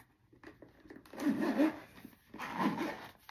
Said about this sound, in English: So put them right back in the case and I'm ready to go. Right in the case like that, or to the side like that, right in the case. Zip it on up.